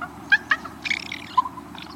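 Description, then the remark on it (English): A raven's soft comfort sound: two quick clicking notes, then a low, throaty burbling phrase and a faint trailing murmur, gentle, with no one talking. “It's called a comfort sound.”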